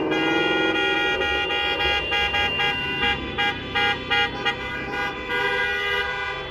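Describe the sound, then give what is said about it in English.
Loud train horns, sounded in Ohio as a tribute to the 2020 high school seniors, blare in a sustained multi-tone chord for about three seconds, then break into a string of short rhythmic toots before holding steady again. No one speaks. “thanks for the train horns, brother.”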